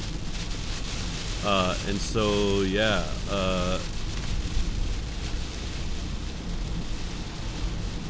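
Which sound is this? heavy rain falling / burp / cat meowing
heavy rain falling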